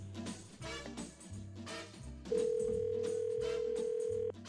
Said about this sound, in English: We're calling her up. We're going to get her on the phone and try to get you guys together again.